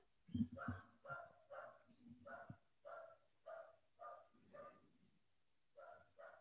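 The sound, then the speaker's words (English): A pet dog barks repeatedly in the background, about ten evenly spaced, fairly faint barks in a steady rhythm, with some low muffled noise beneath the first few. “Y'all hear my dog in the background?”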